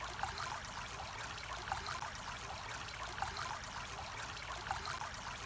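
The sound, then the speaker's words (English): A steady babble of running stream water, continuous, with bright trickling splashes flickering over a constant rushing wash as it tumbles over stones and little rocks. No voices. “You decide to slip off your shoes, have a little wade in the middle of the stream.”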